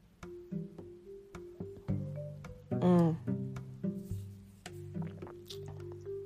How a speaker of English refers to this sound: It has this long finish of chocolate, and it's just warmth through and through. Oh my days. So I'm going to take one more sip.